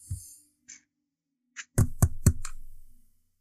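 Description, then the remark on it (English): Three firm knocks on a wooden door in quick succession, fairly loud, with a lighter tap just before and after, following a few faint scattered sounds. “You knock on the door.”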